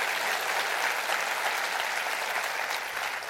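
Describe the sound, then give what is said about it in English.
An audience claps together in a dense, steady wash of applause that holds at an even, fairly loud level for a few seconds, with no voices rising above it. “Would you clap your hands and rejoice to that?”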